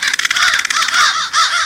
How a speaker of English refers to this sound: Immature crows may spend the night in the roost year-round, but adults of breeding age stay in their own nests while raising their young, then go back to the group after the fledglings leave. So, just how many crows are there in a roost? That varies,